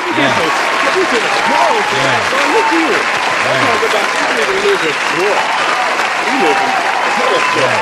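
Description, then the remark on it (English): A crowd bursts into steady, loud applause, many hands clapping densely for the whole stretch, with cheering voices and chatter mixed in underneath. “A, can we give some claps?”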